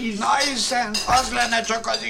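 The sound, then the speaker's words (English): Dishes and cutlery clink and clatter in quick, uneven bursts, with a voice talking over the clanging throughout. “Just because I have dishes clanging around in the background.”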